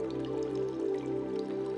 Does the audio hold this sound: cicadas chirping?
no